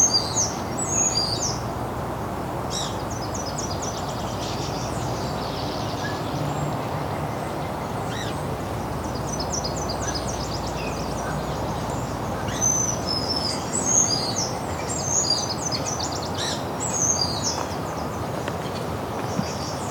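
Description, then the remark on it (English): Several warblers, well hidden in trees whose leaves have started to come out, sing high, thin, rapid trills and chirps throughout, overlapping above a steady outdoor background hum. “All these warblers are very well hidden right now, though.”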